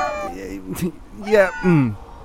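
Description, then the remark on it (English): Several cats in a room full of cats meow in quick succession, their drawn-out, rising and falling cries overlapping and fairly loud, with a short rustling noise between calls. “is there any particular reason why we're sitting in a room that's wall-to-wall with cats?”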